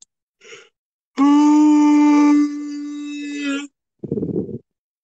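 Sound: big yawn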